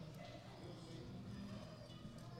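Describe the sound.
Horse hooves clip-clop at a steady walking pace in Estes Park, Colorado, in the morning, blended into a constant outdoor rumble, with faint voices murmuring in the background.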